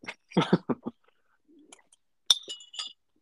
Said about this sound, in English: Looks like you finished your little bowl there. I'm on the last couple slurps. The wonton hit good today